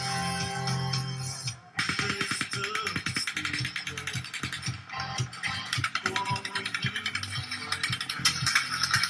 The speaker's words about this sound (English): Whatever the reason, an uneasiness fills the crowd and people move toward the exit. 30 seconds later, we hear what sounds like automatic gunfire.